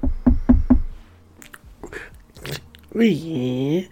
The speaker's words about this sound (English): I'm just going to go around, just knock on the door in a minute, and I'll let you in.